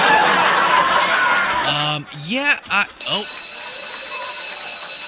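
school bell ringing

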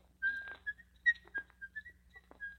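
person whistling a tune

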